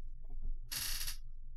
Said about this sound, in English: Squeak. My chair has to squeak.